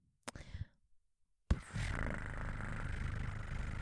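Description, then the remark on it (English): A person imitates a cat purring with a steady, low, rattling drone that runs for over two seconds, preceded by a brief breathy vocal noise and a short pause. “I'll insert an old film projector sound into where I just did that cat purring sound.”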